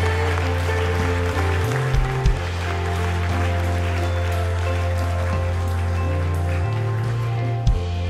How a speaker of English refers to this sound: People are still coming. Come on, keep cheering.